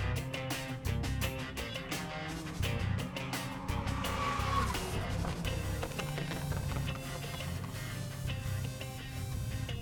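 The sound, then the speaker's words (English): Loud, continuous roar of race car engines at Brands Hatch during the penultimate round of British GT, with a car sweeping past midway and brief tire squeal, dense throughout, with no talking. “Good morning and welcome to From the Racetrack from the penultimate round of British GT at Brands Hatch.”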